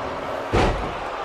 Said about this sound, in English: Jinder slams his knees into the leg of Edge.